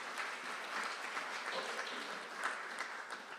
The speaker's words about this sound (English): And so they gave us an extra gift, and then two other people who I don't know also gave extra gifts, so that now we have enough to carpet the church. And so next Sunday, after the service, you can, yeah, do clap, thank you.